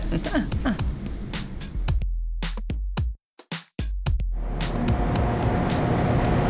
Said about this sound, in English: Let's see if we can capture that beautiful sound of the river that it's been humming throughout this whole conversation, yes. But now I guess it's the time to get up close and personal with yes. the river. And awesome. Hear the roar.